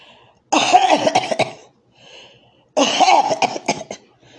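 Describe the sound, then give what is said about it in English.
A voice imitates a little boy in a Target store in Albany coughing openly without covering his mouth, two loud bursts of several rapid hacking coughs each, separated by a brief quieter pause. “Not, his mama ain't taught him to cover his mouth when he coughs. He just coughing.”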